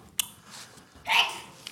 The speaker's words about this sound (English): Bless you. That's a sneeze right there.